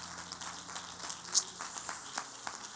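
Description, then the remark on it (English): A crowd of people clapping their hands in praise during a church worship service, a steady, dense patter of applause that holds at an even, fairly soft level for a few seconds with no voices over it. “Clap your hands one more time and give him praise today.”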